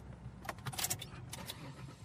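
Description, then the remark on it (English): Car keys jangle in a few quick metallic bursts over a low, steady rumble like a vehicle idling, as a car is started on a road trip in New Mexico. No voices are heard. “Gentlemen, start your engines.”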